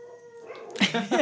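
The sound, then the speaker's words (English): Dogs howl: a thin, steady tone at first, then louder, rougher cries rising in two bursts, with no other sounds over them. “Dogs are affirming here.”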